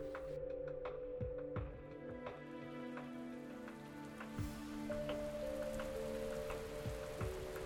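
Steady rain falls throughout, with individual drops pattering sharply on a surface, layered over a low, sustained droning tone in the background.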